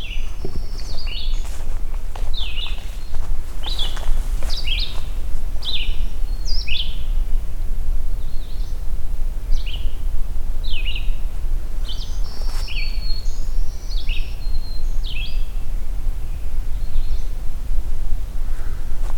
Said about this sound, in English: Black-throated green warblers and very talkative red-eyed vireo here.